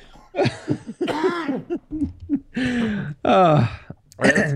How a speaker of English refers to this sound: I have a cough.